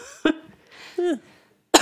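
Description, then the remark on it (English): A person who has been sick coughs: two sharp, harsh coughs about a second and a half apart, with a short voiced, throaty sound between them and quiet pauses around. “I'm still like coughing.”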